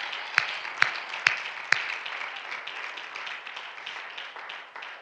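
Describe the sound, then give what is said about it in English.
A crowd applauds the worship team in appreciation during an evening service, a dense crackle of many hands clapping at once, with a few sharp, louder claps ringing out in an even rhythm near the start before the applause slowly fades. “I believe our worship team is due a hand clap of appreciation for that tonight.”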